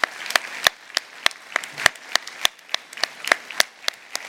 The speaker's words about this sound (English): And let's give these folks a round of applause for their service to our nation.